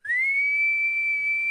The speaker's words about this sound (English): That was better than what I put out there earlier. Still not a great whistle. That was not good. Sounds like a tiny steamboat.